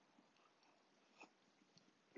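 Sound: sipping coffee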